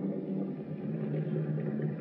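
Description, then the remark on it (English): A car engine idles steadily, a low, continuous rumble with a faint mechanical hum that holds even for the whole moment, with no voices. “Turn out your lights and turn off your motor.”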